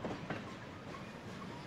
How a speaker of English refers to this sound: he and the other ponies and animals were put in big railroad cars and the whole train was hauled away by an engine.